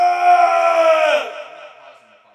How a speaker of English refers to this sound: I just exerted all my breath with that yawn.